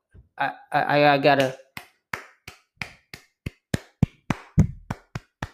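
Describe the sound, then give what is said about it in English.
A brief vocal burst gives way to a steady run of about a dozen sharp hand claps, loud and close to the microphone, evenly paced, applauding both the Albany and UMBC teams after their game. “I gotta hit the microphone though, didn't I? Gotta clap it up to both these teams.”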